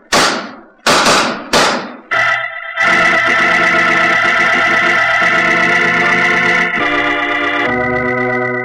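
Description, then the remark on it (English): Four loud, sharp gunshots ring out in quick succession in an exchange of fire between two gambling partners, one drawing a revolver, each with a short echoing decay, before a sustained dramatic musical chord swells in and holds. “Following that exchange of shots,”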